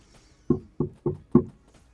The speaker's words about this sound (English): I gently knock on the door.